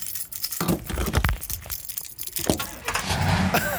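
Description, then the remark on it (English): Car keys jangle in a quick metallic rattle as they are turned in the ignition, followed by an engine cranking and turning over with a low rumble toward the end. “Little sailor boy got the keys turned over.”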